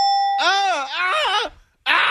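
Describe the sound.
A short, steady electronic buzzer tone sounds first, then gives way to a loud warbling, voice-like cry. After a brief silence, another dense burst cuts in.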